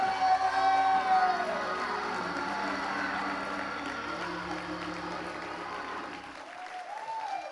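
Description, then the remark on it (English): A church audience claps and cheers steadily for several seconds in praise of God, a dense wash of applause with occasional raised voices and whoops rising above it, fading slightly toward the end. “If he ever pulled you out, you ought to clap your hands right now.”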